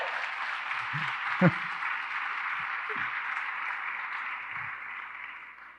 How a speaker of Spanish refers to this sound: Ahí vienen los músicos, help me guys, ayúdenme aquí. Un aplauso, por favor, a ….